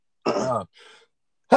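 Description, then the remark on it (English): A single sneeze: a short voiced burst followed by a softer, breathy tail, with another sound starting abruptly right at the end. “I think that was my first time sneezing on the podcast.”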